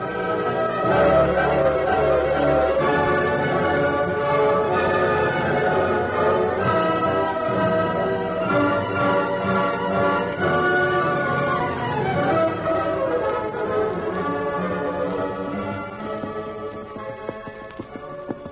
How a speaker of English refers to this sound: the Lone Ranger and Tonto guided their horses at a slow walk through the moonlight toward another ranch